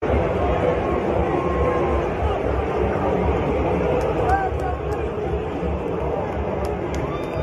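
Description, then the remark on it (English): A ballpark crowd at the Chicago White Sox home opener boos Pritzker and Lightfoot: a dense wash of low, sustained booing mixed with scattered sharp claps that stand out near the end. The level stays loud and even throughout. “Speaking of Chicago, Pritzker and Lightfoot were booed at the Chicago White Sox home opener.”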